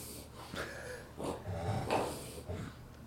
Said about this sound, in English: Oh, my dog's having a spasm. See, she's got itchy throat, too.